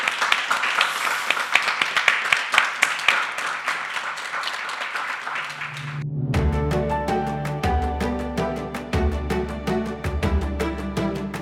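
An audience at an evening talk event hosted by Rocker breaks into a dense, steady round of applause lasting several seconds, which cuts off abruptly as rhythmic music with a thumping beat begins.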